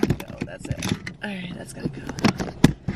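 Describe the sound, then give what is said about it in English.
Steady low rumble of a car's interior while driving, with road noise droning underneath a person talking and a few brief clicks and thumps. “I'm literally just driving.”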